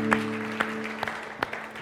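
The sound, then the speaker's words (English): Soft applause from a crowd at a religious service for those who said yes to Jesus that day, a light patter of many hands with a few sharper claps standing out, all fairly faint over a steady low hum. No one speaks. “Could we give a round of applause to those who said yes to Jesus today as well?”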